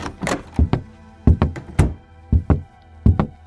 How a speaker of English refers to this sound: Right before you're about to leave, you hear a knock on your door.